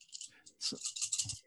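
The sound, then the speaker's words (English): Seven dice, rolled for a manipulation roll, rattle in quick clicking bursts, then a denser clatter with a couple of soft thuds as they tumble. Fairly quiet, with no talking. “Make a manipulation roll.”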